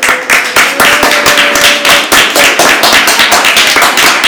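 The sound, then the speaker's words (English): A crowd at St. Francis of Assisi applauds steadily for the Pittsburgh Steelers and the new Steeler Nation Club, many hands clapping in a dense, loud patter with no voices over it, holding at an even level throughout before thinning slightly. “Okay, I'm taking note of each and every one of you that did not clap, so no, there we go.”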